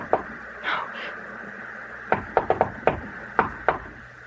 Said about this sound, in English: Someone knocked, Edith. Open the door.